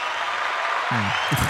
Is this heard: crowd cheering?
yes